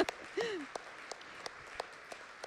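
Scattered, irregular hand claps from an audience celebrating the news that the church consistory voted unanimously to extend a pastoral call, sharp and fairly soft, spaced out rather than a full round of applause, with a brief voiced exclamation near the start.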